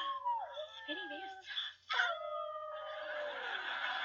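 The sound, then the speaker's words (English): A new female puppy yips and whimpers in a run of high, wavering cries and whines, fairly loud, with a brief pause midway before the plaintive whining resumes. “Oh, we have a new puppy.”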